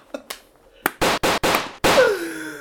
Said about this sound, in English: Oh my god! I probably shouldn't do gunshots for this crazy.